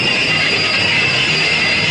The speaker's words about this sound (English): Stop the engine! So he stops the engine again.